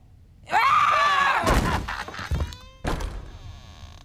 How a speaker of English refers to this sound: I love a screaming goat. Yes. Because I still don't know that they actually exist. I'm still not convinced that the footage that exists of screaming goats is not a person.